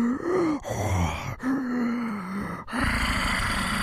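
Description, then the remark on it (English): An echoing, ghostly gasp of air: a low, wavering moan-like voice in several long swells that swirl around a room and are joined by a chorus of similar echoes, ending in a breathy, hissing rush, fairly loud with no talking. “You all just hear this voice, this echoing gasp of air begin to swirl around the room as something begins to gather.”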